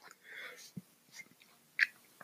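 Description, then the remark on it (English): Soft, sticky chewing of mochi ice cream, quiet and unhurried, with a few wet smacks and small clicks between pauses. “Okay, I'm not going to finish the whole box of mochi.”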